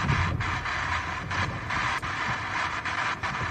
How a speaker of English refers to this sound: Super windy.